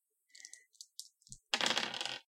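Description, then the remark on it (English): Dice clatter on a hard tabletop for a sanity roll: a few light, quick clicks, then a louder, rattling roll that skitters for under a second before stopping. Crisp, with no voices. “And now you need to roll sanity.”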